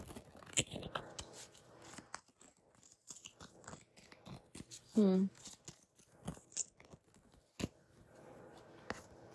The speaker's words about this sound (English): Let me shuffle one more time.